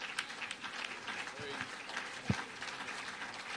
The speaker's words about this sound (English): Well, let's clap for Jesus, everybody. He's the reason why we're here. Hallelujah.